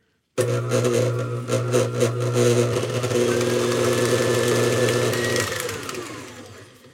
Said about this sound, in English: I'm just going to whip this farmer's cheese to a nice frothy sort of consistency. It's just like making cream cheese or making cheesecake, where you whip the cheesecake. So I'm just doing it in my stand mixer with a paddle attachment.